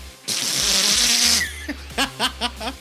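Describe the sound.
Someone imitates a wet fart with their mouth as a verdict on Rob Liefeld's Marvel comic Major X: a long, hissy, sputtering blast about a second long, followed by four short, wet splutters in quick succession, fairly loud.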